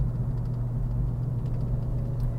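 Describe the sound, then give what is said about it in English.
The engine of a big classic car idles next to the listener's car, a steady, low rumble and continuous deep hum with faint mid-range texture and no speech, holding even in loudness throughout. “All right, guy next to me driving a classic car alert.”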